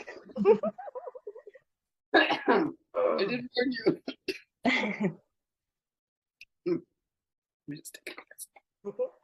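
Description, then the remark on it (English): A brief spoken remark, then a cluster of four or five harsh coughs and throat-clearing rasps in quick succession, followed by faint scattered mouth noises and a few soft words. “I'm going to cough.”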